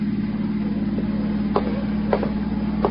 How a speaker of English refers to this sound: No, there's a car out there. It's been following me for the last 200 miles.